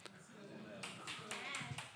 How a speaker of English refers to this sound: Come on, that deserves a better hand clap than that.